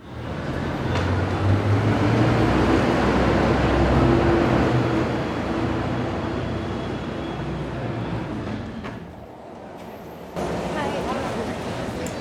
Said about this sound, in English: And now we're going to take you on a trip around Los Angeles to hear from voters about what they think of some of the ballot measures. Our first stop, the Metro Red Line at 7th and Figueroa.